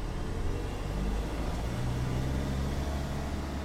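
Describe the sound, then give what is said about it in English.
A car engine hums steadily as the vehicle drives out of a parking lot, a low, continuous rumble that holds an even loudness throughout, with no voices. “We drove out of the parking lot, and I waited until I could no longer see Dr.”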